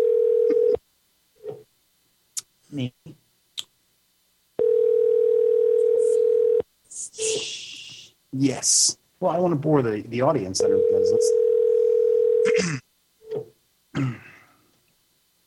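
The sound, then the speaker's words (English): An outgoing call's ringback tone, placed during a radio show, sounds in long, steady, low-pitched bursts separated by pauses. It repeats several times at a moderate level while people talk in between and over it. “It's ringing. Hold on. Oh, it's ringing.”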